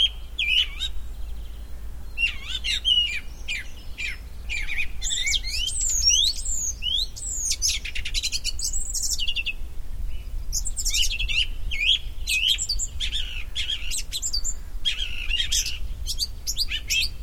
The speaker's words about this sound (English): And above me is the most beautiful plump song thrush you can imagine. And he's singing his little heart out. Just listen to that.